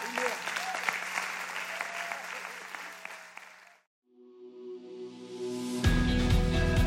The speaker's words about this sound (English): Would you like to get warmed up a little bit? Let's give him some applause right now.